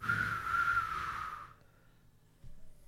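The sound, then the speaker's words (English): A person whistles a brief phrase of a few clear, sustained notes for about a second and a half, then it falls quiet apart from a faint rustle. “I can't whistle.”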